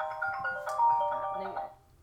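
A phone ringtone plays a short melodic electronic tune of bright, steady tones for about two seconds at moderate volume, then cuts off.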